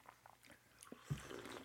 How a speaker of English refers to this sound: So I'm gonna take a sip. Yeah, I wanna try this now.